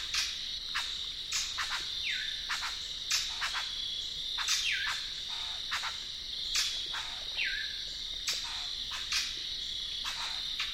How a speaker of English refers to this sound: Not far down the road, I discover several brown thrashers giving harsh notes and whistles in the dim light of dusk.